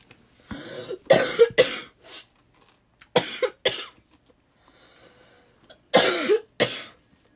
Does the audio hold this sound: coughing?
yes